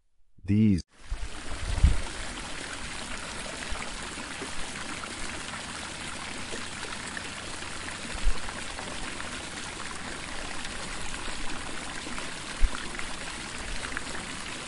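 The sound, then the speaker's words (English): A babbling brook flows steadily for the whole stretch, a continuous rush of water with a few slightly louder splashes and gurgles breaking through, after a brief sharp sound at the very start. “Zephyr swooped by the babbling brook, where it saw glistening fish jumping cheerfully.”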